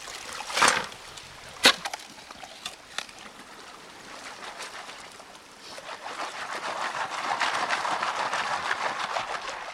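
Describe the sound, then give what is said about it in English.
A couple of sharp, gritty scrapes of a shovel biting into wet ground at a river bend while digging for gold in Plymouth State Park, about a mile downstream from the old Rooks Mine, followed by lighter scraping and a steady wash of flowing, sloshing river water. “He picks a river bend where the water would have likely deposited some of the heavy metal and starts digging.”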